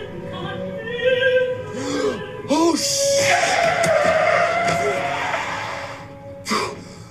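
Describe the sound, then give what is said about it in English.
A voice imitates a car slamming on its brakes on a highway after hitting an animal crossing: a few quick rising and falling squeals, then a long, loud, hissing tire skid lasting several seconds before a short final burst. “And then like he slams on the brakes and the guy just like, yeah.”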